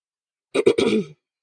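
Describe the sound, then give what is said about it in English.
A single guttural throat clearing in two or three quick rasping pushes, lasting about half a second, with silence on either side. “while you were coughing, I did clear my throat.”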